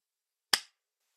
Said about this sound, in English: I'm clapping to it because otherwise editing this will be an awful chore.